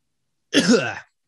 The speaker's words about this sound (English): That was like a cough that I was trying to make into a real cough. Yeah. Good, wasn't it? But it didn't happen.